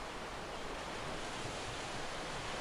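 Ocean surf washing onto a beach in a steady, continuous roar, with no distinct individual crashes, fairly soft and even throughout, with no voices.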